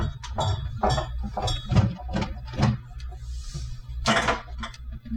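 Glass beer bottles clink and knock together in a series of sharp, irregular taps while someone rummages through a beer fridge, with a low steady hum underneath and a brief rustling scrape near the end.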